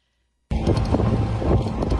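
After half a second of silence, the engine of a moped being ridden along in Brooklyn, New York cuts in and runs steadily, a loud, rumbling drone with a buzzing low hum and a wash of wind-like noise.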